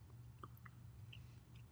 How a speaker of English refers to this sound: I would recommend taking some of the bigger pieces and chewing them. Yeah, that's what I've been doing.